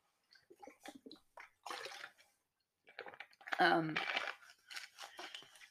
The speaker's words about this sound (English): I'm going to drink water.